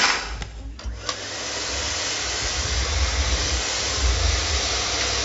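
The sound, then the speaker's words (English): A vacuum cleaner runs with a steady, loud whooshing motor roar, preceded by a couple of brief clicks at the start, with no talking, as it is used to clean a messy place. “Tim, you can have the vacuum cleaner.”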